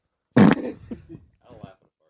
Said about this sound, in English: It's so satisfying to just see fart, fart next to each other.